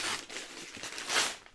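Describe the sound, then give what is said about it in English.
Gift wrapping paper printed with hops being torn open to reveal a craft beer making kit: a crisp, papery rustle and crackle running throughout, with a fuller tearing burst past the midpoint and a short sharp rip at the very end. “Very lovely wrapping paper.”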